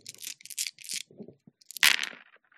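Dice rattle in a cup or hand in a run of short scratchy bursts, then clatter loudly onto a hard surface and skitter to a stop, with no talking.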